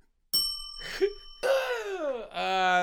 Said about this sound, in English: Okay, we'll hit the bell then.